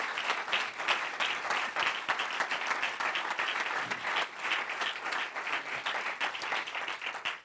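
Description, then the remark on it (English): An audience at a morning church service applauds steadily for several seconds to welcome the pastor and his wife, a dense, even wash of many hands clapping at a fairly loud level with no pauses or voices standing out. “Let's give them a rousing hand of applause.”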